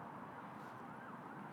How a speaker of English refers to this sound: And there is the usual End of All Things siren. I don't think I've done a single podcast that hasn't had a siren in it.